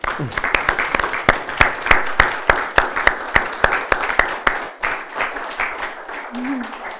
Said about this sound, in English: But I just wanted everyone else to take a look around at the woman in this room. Just give them applause.